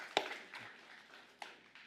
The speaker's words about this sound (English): Somebody felt led to clap with me on that.